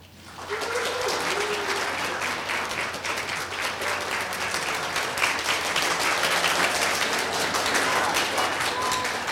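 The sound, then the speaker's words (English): An audience at the Computer History Museum breaks into applause, a dense, steady wash of many hands clapping that starts almost at once and holds at a fairly even, lively level for the whole stretch. “Well, you think it's moderately likely, although I noticed there were five computers in the audience, being as this is the Computer History Museum, who were applauding as well.”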